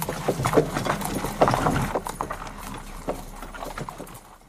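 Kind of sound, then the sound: animal, horse hooves clopping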